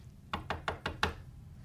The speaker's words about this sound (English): I don't know how long it took them to go to Israel, but when they got there, finally, he sent somebody to knock at the door of the prophet.